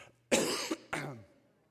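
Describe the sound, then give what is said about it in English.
Two loud, harsh coughs in quick succession, the second shorter and fading into a raspy clearing of the throat, with no talking around them. “And so now I can sell cough drops.”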